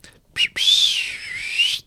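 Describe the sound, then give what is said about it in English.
A person mimics a referee's halftime whistle by mouth: a brief toot, then one long, breathy, high whistle held for over a second, fairly loud with no talking. “That was a really bad whistle.”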